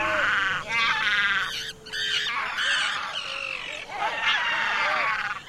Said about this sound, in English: A flock of terns dive bombs a pair of great black-backed gulls on Ram Island, 2.5 acres poking above Buzzards Bay off the Massachusetts coast. The terns want the predatory gulls away from their nests.